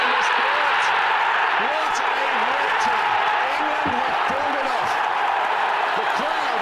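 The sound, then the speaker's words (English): A cricket crowd at the 2005 Edgbaston test match roars in a dense, continuous wall of cheering, with many voices shouting and whooping over the top, steady and loud throughout. “So you can listen to the crowd noise there and get right into it.”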